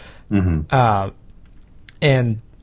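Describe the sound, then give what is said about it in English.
A single small tap as a pencil that a man tosses around is dropped onto a table, landing briefly in a pause between stretches of someone's voiced sounds. “that's the first time of the night that … has dropped the pencil he tosses around”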